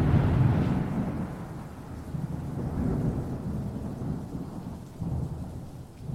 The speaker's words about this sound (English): At that moment, a loud peal of thunder sounded from the forest beyond the meadow.